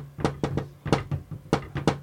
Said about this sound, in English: That's a bit English, that knock. Yeah, it is a bit.